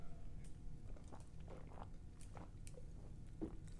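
Someone drinking beer loudly, with a steady run of wet gulps and slurping mouth sounds over a low continuous rumble, and no talking.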